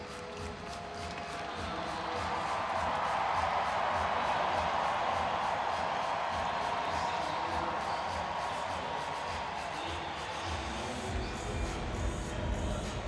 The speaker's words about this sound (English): Crowd cheering because Matt Duchene has come out of the penalty box.